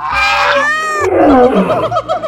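A quick run of mixed animal calls: a loud, harmonic, meow-like wail, then a string of shorter, chirpy, warbling cries in different pitches, all back to back with no talking.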